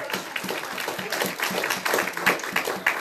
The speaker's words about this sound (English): And give God a good hand clap one more time.